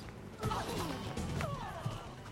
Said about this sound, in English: Yeah, but it's a PM Entertainment movie. They've got to break more glass.